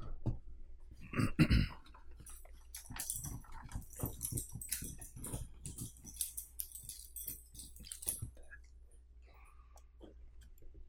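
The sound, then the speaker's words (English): Max the dog makes scattered noises: sniffing, small whines and mouth sounds, with a louder burst near the start, then softer fidgeting that tapers off. “We're joined by Max the dog.”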